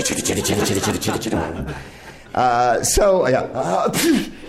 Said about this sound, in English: Thank you. That was Fred Ott's sneeze.